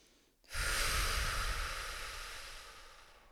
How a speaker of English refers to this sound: Whew, let's all just take a deep breath for a second.